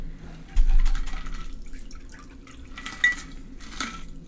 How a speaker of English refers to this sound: It's called an XYZ, rum, triple sec, and lemon juice. Pour that into those cocktail glasses.